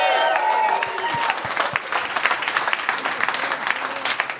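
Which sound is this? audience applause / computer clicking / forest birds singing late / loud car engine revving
audience applause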